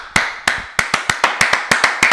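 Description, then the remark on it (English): Hands clap about a dozen times in a quick, slightly uneven rhythm, each clap a sharp, bright crack standing alone with no talking over it; the hosts are clapping for themselves to mark a season finale. “But yeah, let's just clap it up for ourselves real quick.”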